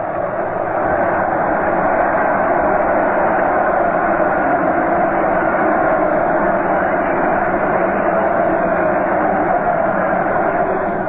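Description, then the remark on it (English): A loud, steady roar of a large stadium crowd cheering as the Yankees go onto the field at a World Series game, a dense wash of many voices that holds at full strength for about eleven seconds without letting up. “There the Yankees go onto the field. Listen to that cheer.”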